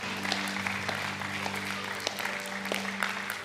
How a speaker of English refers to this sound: Let's give the Lord a hand clap this evening.